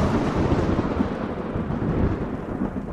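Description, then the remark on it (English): A deep, continuous rumble of thunder from lightning strikes rolls steadily for the whole moment, loud, with dense low-end energy and no voices. “calls lightning from the sky, scattering the small boats as each helmsman maneuvers out from under the cloud that's shooting lightning bolts at them”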